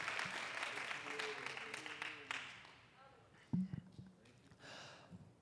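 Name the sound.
audience clapping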